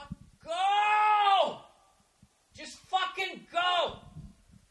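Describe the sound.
A man in his car in L.A. lets out loud, wordless angry yells at the driver in front of him: one long strained shout, a brief pause, then a few shorter choppy bursts of frustrated hollering.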